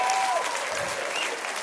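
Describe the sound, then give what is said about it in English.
Steady audience applause fills the whole moment, a dense wash of clapping hands at an even, sustained loudness with a faint whistle-like tone cutting through briefly at the start. “Thank you for applauding what my mom hates.”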